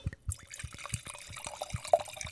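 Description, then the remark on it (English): A drink pours into a glass, a quick run of gurgling, splashing liquid with a brief bright clink near the end. “Just hit him with a pour. Here comes your pour, bud.”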